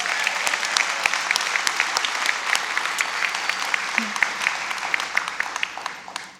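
A crowd applauds the speaker's mother as she stands, a dense wash of many hands clapping at once with sharp individual claps standing out, holding loud and even before tapering off at the end.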